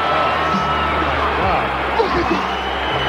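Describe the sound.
A wrestling arena crowd roars and cheers in a steady, dense wall of noise that stays loud throughout, with shouting voices blended into the din.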